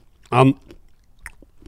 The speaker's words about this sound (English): Get close to the mic. Get that lovely mouth. No, somebody's doing me, not you. I like it when you chew it very close to the mouth.